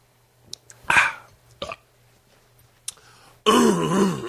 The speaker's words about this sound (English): I got to clear my throat. And I'm not going to start with that. Let me clear my throat.